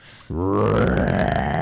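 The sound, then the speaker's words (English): After a brief moment of quiet, a person lets out a loud, gravelly imitation of an Allosaurus roar: a deep, rasping growl sustained for over a second without a break. “But I only have one dinosaur roar.”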